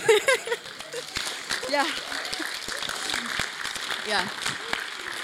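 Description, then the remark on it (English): Scattered audience clapping at a church gathering during a speaker's thank-yous, a loose patter of sharp claps starting and stopping irregularly, mixed with overlapping voices and murmured chatter throughout. “Don't clap yet.”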